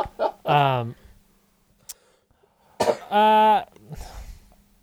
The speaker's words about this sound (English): Excuse me, I didn't mean to cough. I'm getting over a cold